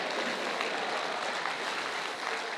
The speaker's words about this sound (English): If you know what I'm talking about, for 5 seconds, clap your hands and say, everything's going to be all right.